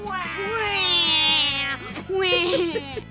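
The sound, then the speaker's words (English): A voice imitates a baby's wailing: two long, high, quavering cries, the first drawn out and wavering, the second shorter after a brief gap, over a steady low background. “It hit him smack in the stomach and knocked him wailing to the floor like a baby. Can you make some wailing noises?”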